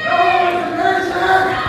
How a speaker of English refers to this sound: Unfortunately, now there are two more people standing in the aisle shouting.